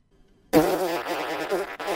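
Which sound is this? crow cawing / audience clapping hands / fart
fart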